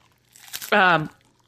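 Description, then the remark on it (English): A crisp crunch as someone takes a first bite into a hard-shell value taco that is falling apart, a brief crackling burst followed right after by a short voiced murmur. “My first bite into the value taco.”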